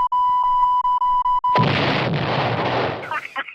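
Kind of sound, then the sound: sound effect, censorship bleep tone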